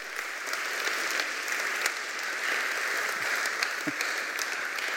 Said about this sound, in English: Hallelujah is right. We should give the Lord a clap offering for that.